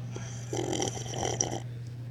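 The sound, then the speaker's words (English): A voice makes a throaty, raspy drinking sound effect while drinking, one sustained gurgling burst lasting about a second, over a steady low hum. “So in volume 9, that's why I like to make sound effects while I drink. Every time I drink, I go.”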